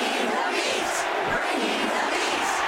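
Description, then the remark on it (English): A large stadium crowd roars and chants in a dense, continuous wall of voices, steady and loud throughout with no single speaker standing out. “What's the crowd chanting?”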